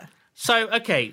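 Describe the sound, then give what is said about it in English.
A person imitates a goat, giving a short, wavering bleat that breaks into a few quavering pulses before trailing off, about a second long. “They're possessed by goats.”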